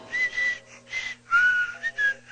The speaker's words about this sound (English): his whistling nostril will soothe your psyche and comfort your soul with the naturally organic rhythms